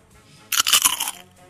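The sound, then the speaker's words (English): A loud burst of crunching as crisps are bitten and chewed, several sharp crackly crunches packed into about half a second, then quiet. “The sound of crunching contributes to the pleasure of eating crisps.”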